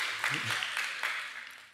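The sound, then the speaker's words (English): A brief, fairly quiet patter of audience applause from a crowd in response to a speaker's example, dense and hissy, with a voice briefly murmuring early on before the clapping tapers off. “And so I'm getting some applause on the Snickers example.”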